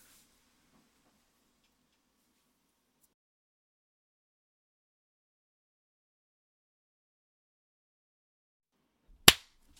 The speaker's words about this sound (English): Got a clap in there. I want to drop a marker.